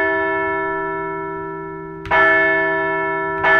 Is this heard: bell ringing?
yes